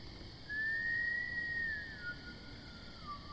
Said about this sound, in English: What was that? Did you just hear someone whistling? No. No, it was probably just the wind in the trees.